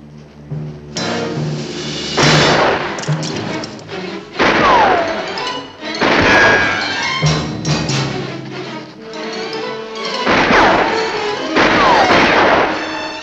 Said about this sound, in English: The Navy ship sees the Japanese flag hanging on the tree and blasts the beach with cannon fire. Lots of high violin shrieks help intensify the shock value of the attack.